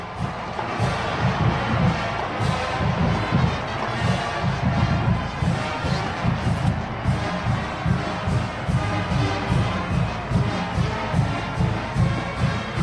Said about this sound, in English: As here comes your Oregon State Beavers out of the tunnel here to the roar of the crowd.